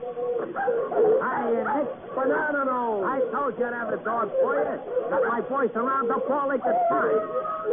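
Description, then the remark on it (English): Several dogs bark and yelp over one another in a dense, continuous, loud racket, with no pause across the whole stretch. “I told you to have the dog quiet.”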